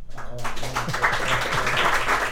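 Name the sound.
audience applause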